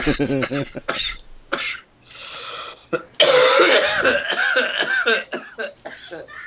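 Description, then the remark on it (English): Someone coughs and clears their throat repeatedly in harsh raspy bursts, with a voice briefly talking at the start between fits. “You need some cough medicine, man.”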